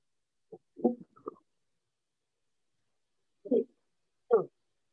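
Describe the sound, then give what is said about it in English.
A big sneeze: a quick cluster of short, loud bursts, then a pause of a couple of seconds and two more separate explosive bursts, with no talking; the sneeze shook the camera. “I told you that was a big sneeze.”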